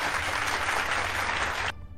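A burst of crowd applause sound effect, triggered by pressing an applause button, plays loudly and steadily, dense clapping filling the sound for nearly two seconds before cutting off abruptly.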